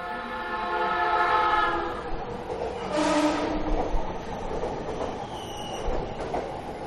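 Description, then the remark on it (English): A train rumbles steadily along the rails, with a sustained horn-like tone in the opening seconds and a brief hissing swell partway through, on a ride from Soga Station to Kamogawa Station in Chiba, Japan. “Well, I took the train all the way to Kamogawa Station.”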